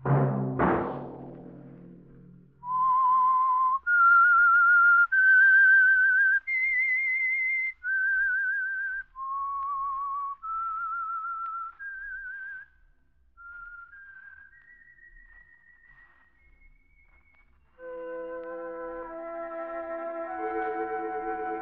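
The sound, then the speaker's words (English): After a sharp orchestral chord, a lone whistler carries a slow, clear theme melody of sustained notes rising and falling as a program's signal, fading softly before a held orchestral chord swells in to close. “That whistle be your signal for the Signal Oil program, The Whistler.”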